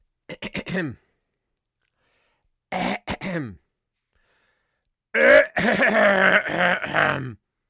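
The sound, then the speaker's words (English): A series of forced coughs and throat clearing in three bursts: a quick run of short hacks, a pause, a couple more, then a longer, louder stretch of exaggerated throat clearing and grunting. “honey, do you have a cough?”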